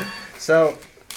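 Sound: telephone ringing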